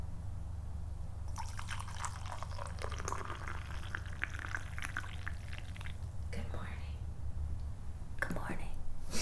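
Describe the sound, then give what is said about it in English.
Coffee pours from a French press in a soft, trickling stream lasting several seconds, with light splashing and a low steady hum underneath, quiet. “Are you doing some ASMR with a coffee pour right now?”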